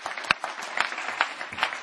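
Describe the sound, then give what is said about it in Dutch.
An audience applauds to give Jesus a hand, a dense, steady wash of many hands clapping at moderate volume, with a few sharper, louder claps standing out above the crowd. “Come on, let's give Jesus a hand.”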